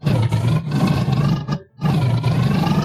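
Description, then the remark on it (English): A person voices a loud, growling monster roar, imitating a Hodag, holding it for over a second, pausing for a quick breath, then roaring again just as forcefully. “However, Jeff Hodag, being the most righteous and great Hodag that he is, lands upon his tail, skids, and lets out a roar of...”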